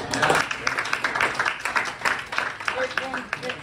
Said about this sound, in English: Can we just give a round of applause to police?